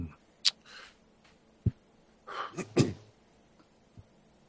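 breathing

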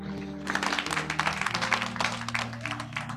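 audience clapping

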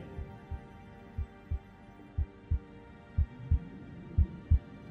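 heartbeat sound effect

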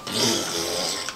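fart

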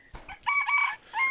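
rooster crowing

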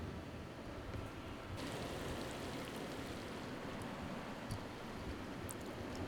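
rain

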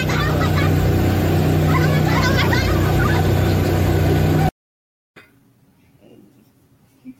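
race car engine roaring

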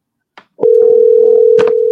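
telephone dial tone

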